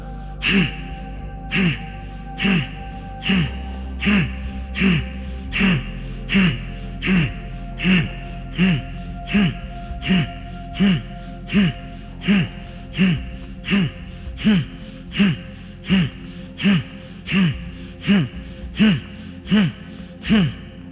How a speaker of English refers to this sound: Sit comfortably, close your eyes. We are going to do 3 sets of breathing, 30 times each. So let us start.